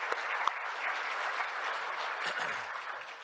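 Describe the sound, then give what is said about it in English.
Steady applause from a church audience thanking committee members, a dense wash of many hands clapping at an even level for a few seconds, with no voices audible over it. “So let's give them a thank you round of applause.”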